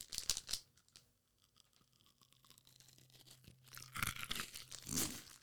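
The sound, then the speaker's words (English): Crisp crunching as someone bites into a hard-shelled Silky Gem jelly candy: a sharp burst at the start, a quiet pause, then a cluster of louder crackly chews toward the end. “Just go this one at a time and crunch into it.”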